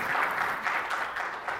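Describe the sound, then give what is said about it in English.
A crowd applauds steadily for a newly announced associate pastor, a dense wash of many hands clapping at once with no voices standing out, sustained at an even, moderate loudness. “So clap it up for him.”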